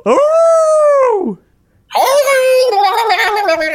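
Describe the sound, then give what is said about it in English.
A person voices two loud wolf-like howls, imitating a digital-sounding VR hound howl. The first is a smooth tone that bends down at the end. After a short pause, the second comes out raspy, buzzy and electronic-sounding. “It sounded like it's a cross between a wolf howl and a dial-up modem.”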